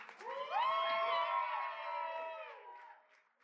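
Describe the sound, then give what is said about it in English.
A crowd cheers and whoops over a steady wash of clapping, with several voices holding rising, wavering tones for a few seconds before fading out. “Another huge round of applause”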